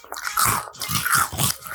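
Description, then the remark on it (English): Crunching of dry Cinnamon Toast Crunch cereal, eaten without milk, being chewed, with three loud, rhythmic bites, each a crisp, brittle burst over a dull jaw thump. No one speaks. “If you want to hear some real crunch, I got you.”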